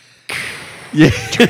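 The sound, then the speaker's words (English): A voice imitates hissing steam: a sudden, steady breathy hiss that runs for over a second, broken near the end by two short, louder voiced puffs. “It just, like, you hear the steam goes,”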